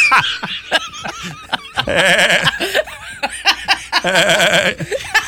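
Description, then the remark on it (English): A person imitates a billy goat, letting out two long, wavering, nasal bleats with shaky vibrato, separated by short breathy gasps and chuckle-like bursts, loud. “So like a billy goat.”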